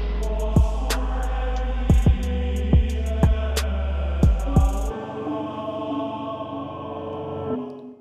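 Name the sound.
static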